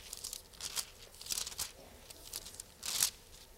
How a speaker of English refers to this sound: Let's look at Luke. Luke chapter 7, I think. Come encourage me. I want to hear pages turning. Luke chapter 7.